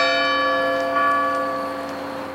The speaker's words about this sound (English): Suddenly, the town square clock began to strike 11. As the chimes resonated around her